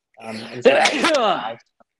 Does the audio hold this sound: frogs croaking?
no